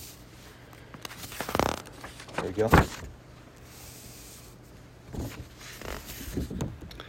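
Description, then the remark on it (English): Paper pages rustle and flip in a few quick bursts, with a short pause between handlings, while a man speaks briefly in the middle, as paper pages are turned to find Ephesians chapter 4. “It's been a while since I've gone old school with paper.”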